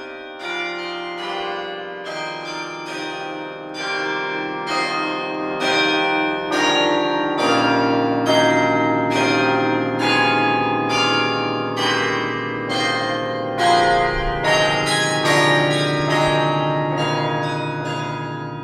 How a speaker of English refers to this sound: I was trying to imagine in my mind what large bells in a tower would sound like and how you would play them from a keyboard